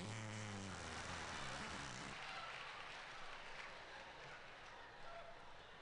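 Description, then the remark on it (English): A loud, low, buzzy fake fart made by blowing into the crook of an arm sputters for about two seconds, its pitch wobbling, then trails off into a breathy, rustling hiss. “Ways to make the fart sound when you're a kid.”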